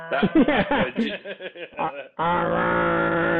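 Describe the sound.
Voices imitate a foghorn: a couple of seconds of wavering, moaning vocal hoots, then one loud, steady, low droning blast held to the end.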